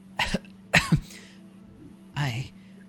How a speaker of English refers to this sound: You hear this sort of like weeping cough come.